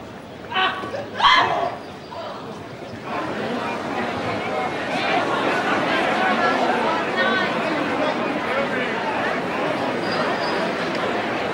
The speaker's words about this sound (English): Right before the stabbing, the television broadcast cut away from the court, as it tends to do between games, with the score on the screen and the crowd murmuring in the background.